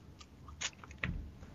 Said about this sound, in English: Sorry, you guys caught me chewing on a pretzel.